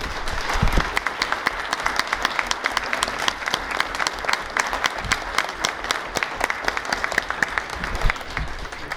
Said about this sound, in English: Thank you, candidates. Can we get a round of applause for your candidates, please?